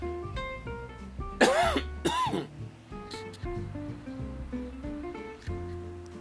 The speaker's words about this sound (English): Here comes a cough that just snuck up on me. Just as I said, you heard that cough just snuck up on me.